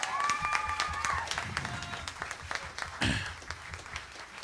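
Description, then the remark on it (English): A church audience breaks into sustained applause honoring the mothers, with dense rapid clapping throughout and a few whoops and cheering voices rising over it early on before the clapping gradually thins. “Would you give them a big round of applause again?”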